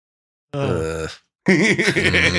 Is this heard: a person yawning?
yes